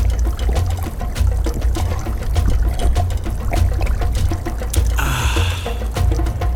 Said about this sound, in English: a large hokioi named Namu swooped down and trickled water from its peak